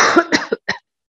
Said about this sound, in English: Sorry, I have a bad cough.